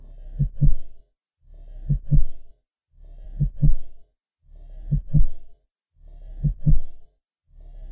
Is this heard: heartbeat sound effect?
yes